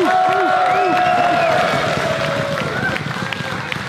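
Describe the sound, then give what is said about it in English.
A loud, steady crowd at a jiu-jitsu match between a blue belt and a black belt cheers and yells throughout, with many overlapping voices shouting and whooping at once, continuous for the full few seconds. “Glad everybody wants to cheer on the blue belt.”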